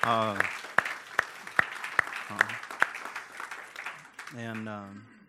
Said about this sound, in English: But I just love being part of that, and I just want to say thank you, everybody who had anything to do with that. So maybe we just can clap for those people this morning, whoever they are.